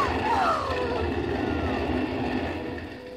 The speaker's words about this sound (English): Oh, and here comes the fire engine.